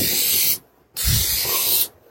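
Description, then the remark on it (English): Two bursts of blue aerosol spray paint hiss from a can onto a car, each about half a second to a second long with a brief pause between, fairly loud with no talking. “Spray paint in his dad's car.”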